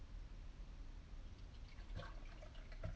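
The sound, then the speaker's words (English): Water pours quietly into a container, a soft continuous trickle with a few brighter splashes and drips toward the end, with no talking. “Give me some of your water.”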